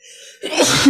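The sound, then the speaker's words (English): A single loud sneeze: a short, faint intake of breath, then a sudden noisy burst of air that holds for about half a second. No one speaks. “Bless you. Thank you.”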